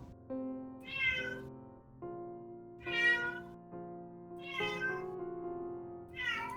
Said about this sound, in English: And a vague meow. That's just Gray Malkin trying to work out his own contract with Taraxis.